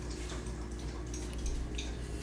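A pet named Rocky laps up water loudly, making a continuous run of wet, rhythmic slurping and clicking sounds with no voices over it.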